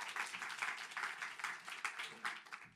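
An audience applauding: a dense, steady wash of many hands clapping that holds for the whole stretch at a moderate, even level, with no voices standing out.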